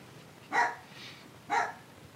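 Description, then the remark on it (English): A dog barks twice, two short, sharp woofs spaced about a second apart, standing out clearly against a quiet background with no talking. “My dogs are barking.”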